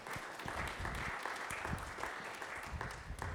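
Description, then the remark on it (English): A crowd applauds steadily for two men standing up front, dense overlapping claps forming a continuous, fairly loud wash of noise that holds its level throughout without any voices rising above it. “You guys, give them a round of applause for the two beautiful men up here.”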